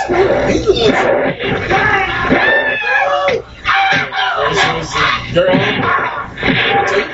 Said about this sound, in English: And why are they screaming like bitches?